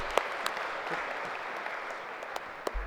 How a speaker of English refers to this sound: Can you guys please clap for the kids?